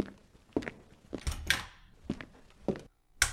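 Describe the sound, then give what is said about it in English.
About six footsteps of a person leaving a room, at a steady walking pace, each a sharp, dry knock with a quiet gap between, with no voices present. “Carson leaves with footsteps.”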